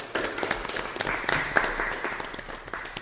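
A small group of people clapping together, a steady burst of dense, crackling handclaps that holds at a moderate level for a few seconds without any talking.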